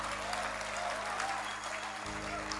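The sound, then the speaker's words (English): An audience applauds for the Lord Jesus steadily throughout, a dense wash of many hands clapping at an even, sustained level with a faint low hum underneath and no pause in the clapping. “Clap for the Lord Jesus.”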